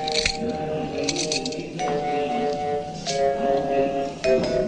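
Handcuffs click shut on two men with their arms around a post, in a few sharp metallic clinks and ratchets, scattered across a few seconds over a steady, low humming tone.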